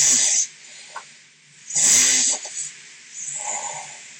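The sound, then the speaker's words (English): Three rough, raspy snores recorded by a sleep app, each a long rattling breath with a quieter wheezy stretch between them, at a moderate level with no one talking. “So it goes like all different snores.”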